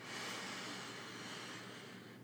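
A long, deep breath drawn in through the nose, a steady airy rush lasting about two seconds and fading slightly toward the end, with no talking over it.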